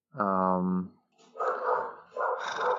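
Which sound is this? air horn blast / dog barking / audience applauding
dog barking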